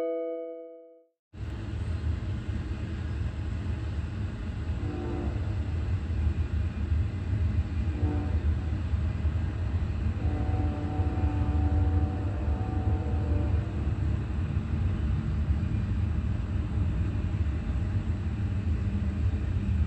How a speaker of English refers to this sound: That is amplification of what is the sound reminiscent of an actual train.